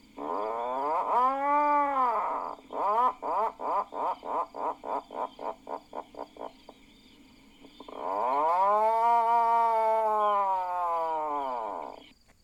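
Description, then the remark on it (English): An adult puffin's growling call at the burrows on an island: a long, low, groaning moan, then a rapid stuttering run of about a dozen pulses like a toy chainsaw, ending in another drawn-out groan. “While they're active on the island, and especially in the burrows, the adults make their distinctive toy chainsaw call.”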